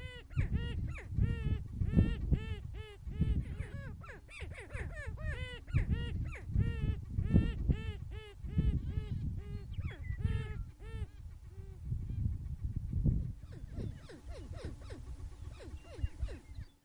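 A chorus of greater prairie chickens calling outdoors during courtship season at the Fort Pierre National Grassland in central South Dakota: overlapping cackles, whoops and low booming moans that repeat continuously and fairly loudly from several birds.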